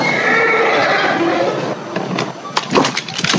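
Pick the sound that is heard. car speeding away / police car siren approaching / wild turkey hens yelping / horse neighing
horse neighing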